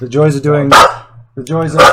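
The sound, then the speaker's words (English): A dog barks loudly, two sharp, raspy barks each preceded by a drawn-out whining yowl, with a brief pause between them. “Sorry, my dog wants to add something in there.”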